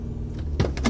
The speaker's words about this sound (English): My car wasn't even stopped before he opened the passenger door.